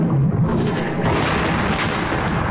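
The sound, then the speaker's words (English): Loud, continuous explosive blasts rip through the whole clip as a dense, roaring barrage with deep rumbling underneath: 30 shots from Vespa-class fighters exploding at point-blank range into the shattered hull of Harlequin's spaceship, the cave hog. No voices are heard. “30 brilliant flashes of light streaked through the darkness and exploded into the shattered hull of Harlequin's cave hog.”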